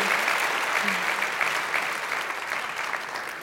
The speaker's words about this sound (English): Thank you so much for being here tonight. Please, please, please give them a huge round of applause. Thank you.